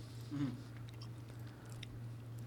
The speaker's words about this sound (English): Can you hear me chewing it on the microphone? Yeah, please don't chew into the microphone.